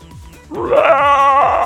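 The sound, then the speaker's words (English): In a Dungeons & Dragons game, a person's voice imitates a mother bear's roar, like a mother bear yelling at someone for getting too close to her cubs, cast as a Minor Illusion to distract: a single loud, sustained, wavering cry with a slightly bleating quality, rising in after a short quiet start and holding steady to the end. “It's going to be a bear roar. Like a mother bear yelling at someone for getting too close to their cubs.”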